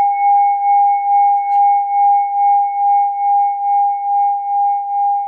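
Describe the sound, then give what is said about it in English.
A meditation bell is struck and rings with a steady, pure mid-pitched tone and a faint higher overtone, its sound gently pulsing in slow waves as it sustains for several seconds without talk. “Strike the bell, hold still.”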